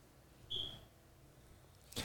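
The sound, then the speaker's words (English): A single short, high-pitched cricket chirp sound effect, played from the roadcaster, sounds on its own over a quiet background, followed a moment later by a brief noisy burst. “The cricket sound. I forgot it was on the roadcaster.”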